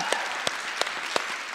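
A crowd claps for a moment, a continuous wash of applause with a few sharper individual claps standing out at an even pace, moderately loud throughout, with no talking.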